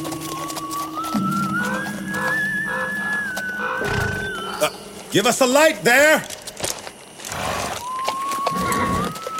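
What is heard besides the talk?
horses approaching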